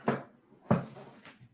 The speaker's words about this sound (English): So I'm closing my door because I can hear myself in your microphone.